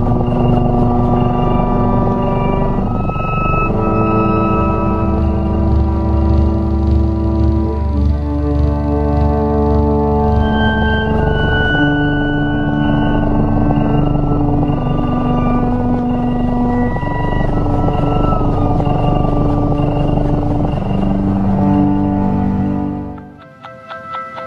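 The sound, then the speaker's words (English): Gentle, steady music composed to relax cats, with long sustained tones and slowly shifting notes over a warm low drone, including a pulse related to purring of 1380 beats per minute, playing loud and continuously with no voices before fading out at the end. “But I thought, let's end the segment with a little clip of music that was composed by this one particular a person, which is apparently going to really get your cats to relax and be incredibly happy.”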